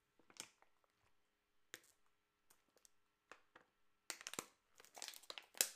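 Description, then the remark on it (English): Someone takes a swig from a plastic water bottle: scattered sharp crinkles and clicks, then a louder, denser burst of crackling plastic near the end. No one speaks. “Let me take a swig of my water.”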